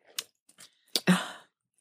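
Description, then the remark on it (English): During a drink break, someone takes a few quick sips with small wet mouth clicks, then a louder gulping swallow followed by a short breathy exhale. No one speaks. “Drink break, hold on. Shush. Swallowing.”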